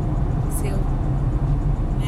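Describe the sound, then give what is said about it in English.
A car driving along a multi-lane road with very little traffic, heard as a steady low rumble of engine and tire noise that holds evenly throughout, with a faint higher hiss passing briefly. “So I decided to both drive the road and also walk the road to see what that was like.”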